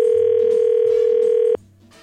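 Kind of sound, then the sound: signal or alarm, telephone dial tone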